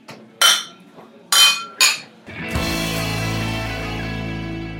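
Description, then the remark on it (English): Three bright, sharp glass clinks sound in a quick uneven rhythm as glasses are raised in a toast to Ricky Hill, followed by a sustained shimmering ring that hangs in the air until the end. No one speaks. “I think just around the podcast table, can we just all raise our glasses to Ricky and just say cheers, mate?”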